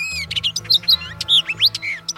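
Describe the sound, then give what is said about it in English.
Hooded orioles calling in a busy run of quick, whistled chirps and sweeping notes, fairly loud, over a low steady background hum with no talking. “So if I see like a couple of hooded orioles behind me when I'm about to go try a trick, I'm going to put my board down and like check out what those orioles are doing.”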